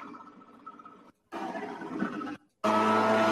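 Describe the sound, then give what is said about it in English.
A leaf blower engine roars in three bursts broken by short gaps, the last one loudest and steadiest as it revs to full throttle with a harsh, buzzing whine. “Listen to the throttle of the leaf blower. Like he just full throttle squeezed it.”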